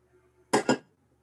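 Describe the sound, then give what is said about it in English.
A glass is set down over a candle with two quick clinks in rapid succession, crisp and fairly loud against an otherwise quiet background. “I'll put the glass on.”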